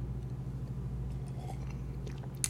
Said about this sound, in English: Take a quick sip of my water break. Staying hydrated.